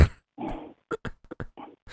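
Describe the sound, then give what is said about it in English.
A six-month-old female puppy whines and yips: one drawn-out whimper followed by a quick series of short, high little cries and a final whine, with no one talking. “Oof, someone's got a puppy. Yeah, it actually is a puppy.”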